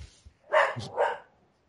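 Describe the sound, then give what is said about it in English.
A dog gives two quick barks in succession, a short sharp double bark, with a brief gap between them and nothing else going on. “The dogs agree, you see?”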